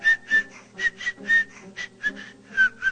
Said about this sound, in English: his whistling nostril will soothe your psyche and comfort your soul